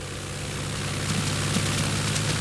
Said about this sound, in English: That's what scares you? An airplane engine?